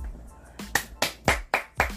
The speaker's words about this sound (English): So I'm glad. Let me clap.